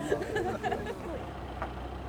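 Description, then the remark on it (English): A steady low rumble of vehicle engines idling and moving as cars pull up in the car park at Spittle Village Hall, with indistinct voices murmuring over the first second. “And you can probably hear the cars pulling up back in the car park now at Spittle Village Hall.”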